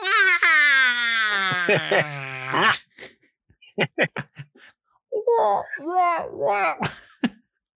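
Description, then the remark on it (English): A voice does a feeble, whiny imitation of a T-Rex roar: a thin, wavering, high-pitched wail lasting a couple of seconds, followed by short clicks and bursts of strained vocal noise. “Oh, it'd be so shit if a T-Rex just sounded like... like when it roars, instead of like doing like a big bellowing roar like it does in the movie, it just goes...”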